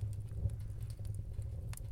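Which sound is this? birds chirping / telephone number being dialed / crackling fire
crackling fire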